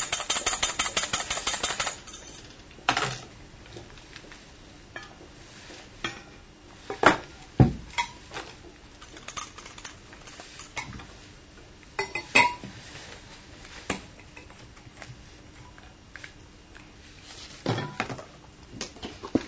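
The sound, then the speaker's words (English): A spoon stirs and clinks against a glass, dissolving something in hot water, with a brief rush of liquid at the start, then irregular sharp taps and scraping; no one speaks. “I've usually got a kettle going, but I thought it'd be safer just to have it ready in the glass. So I dissolve that in the hot water.”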